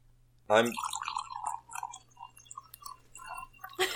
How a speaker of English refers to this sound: He's pouring a drink. That was my wine. I obviously need more wine.